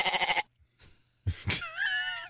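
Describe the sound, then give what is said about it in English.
A goat bleats: a loud, quavering bleat, a short pause with some soft rustling, then a couple of thumps and a second drawn-out, wavering bleat. “Now, a goat. That one doesn't sound great, like just waking up.”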